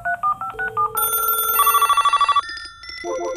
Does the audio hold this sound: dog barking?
no